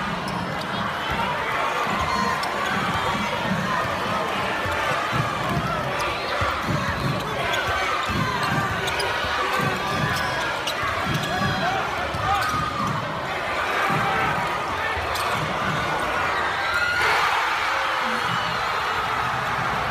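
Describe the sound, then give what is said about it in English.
Basketball game sounds right after a game-winning shot made at the buzzer with about two seconds left: a ball thumps the court again and again beneath a loud, steady roar of crowd noise and shouting that holds for the whole stretch without fading. “He shot the ball. He got it in there, and the crowd went crazy.”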